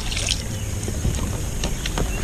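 Water sloshes and laps around a small kayak on a lake, with a few soft paddle splashes over a steady, breezy outdoor rumble. No one speaks.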